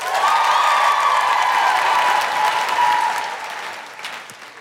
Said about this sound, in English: Big round of applause for Ziva.